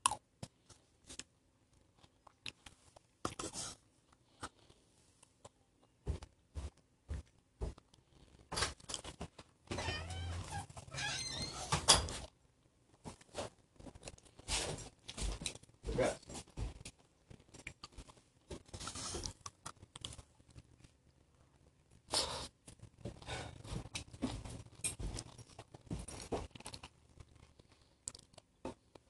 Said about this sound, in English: I freaking love how crunchy this coleslaw is.